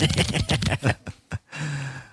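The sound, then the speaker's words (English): A deck of cards being shuffled: a quick run of crisp, papery flutters, a few sharp separate snaps, then a steady rushing riffle to the end. No one speaks. “Let's shuffle up the cards real quick.”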